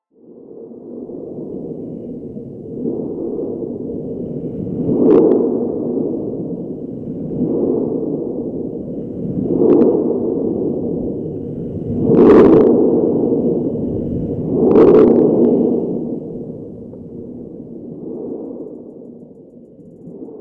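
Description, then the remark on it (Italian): Sea waves vibrating beneath beach sand, picked up by a LOM Geophone contact microphone: a steady low, muffled rumble that swells every few seconds, with brief sharper thuds cresting on several surges. No voices. “Quello che avete appena sentito sono le vibrazioni causate dalle onde del mare sotto la sabbia della spiaggia.”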